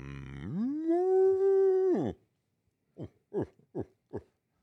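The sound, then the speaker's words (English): A person imitates a bull elk: a sustained, rising, nasal call lasting about two seconds, a brief pause, then four short, guttural grunts in quick succession, fairly loud, with no talking. “That sounds like a bull elk grunt.”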